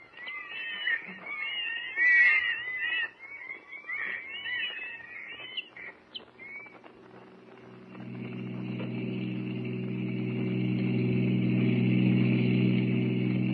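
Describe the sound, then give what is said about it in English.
High, busy chirping fills the first half, then a car's engine starts up with a steady low droning hum that grows louder and holds to the end, with no talking. “Now, I'll park here.”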